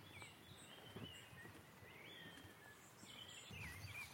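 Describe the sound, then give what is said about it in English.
Goldcrests calling near alders and water mint with high, thin, needling notes like tiny silver bells, a scattering of faint tinkling calls over a soft outdoor hush, with no voices. “Here, needling like tiny silver bells of gold crests.”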